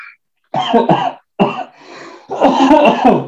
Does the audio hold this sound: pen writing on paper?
no